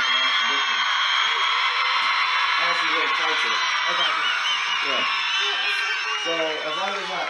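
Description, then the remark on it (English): A large rally crowd in Texas roars continuously, a dense, loud wash of cheering with scattered high whoops, and some voices talking underneath throughout. “Do you hear that crowd back there?”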